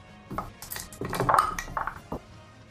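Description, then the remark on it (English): A handful of dice, rolled for damage in a tabletop game, clatter and rattle together across a hard surface, a busy burst of overlapping clicks and clinks lasting a couple of seconds, moderately loud, with no voices. “A lot of dice on this roll.”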